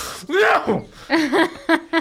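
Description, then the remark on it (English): A person loudly imitates an exaggerated sneeze with a drawn-out, breathy windup and then a few short, sharp voiced bursts, theatrical. “He lets out like a loud dad sneeze.”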